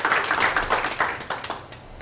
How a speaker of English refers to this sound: Give him a hand clap. Amen.